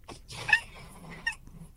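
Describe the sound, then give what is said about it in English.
A gray catbird gives its mewing call, two short, nasal, cat-like mews about a second apart, clear over a low background rumble. “Wait, what was that, a catbird?”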